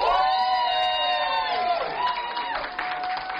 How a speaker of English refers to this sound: By a round of applause, please.